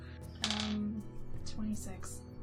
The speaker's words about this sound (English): this is how we play the game. You gotta throw dice.